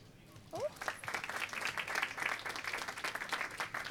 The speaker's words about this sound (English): Thanks, guys. I wasn't expecting a round of applause. That's amazing.